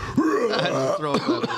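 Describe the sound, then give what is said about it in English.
Raspy, throaty coughing, loud, a rough voiced hack that runs continuously for a second or two with no other talk around it. “Cough from all the camels.”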